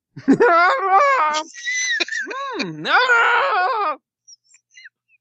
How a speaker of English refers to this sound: Watch as I stick this delicious beverage straw into my eye. Every time I put it in, I just start screaming.